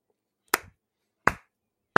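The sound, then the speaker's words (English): Three sharp hand claps by a speaker clapping for a co-host, spaced slowly and evenly about three-quarters of a second apart, each crisp with a quick decay, with silence in between. “That's me clapping for you”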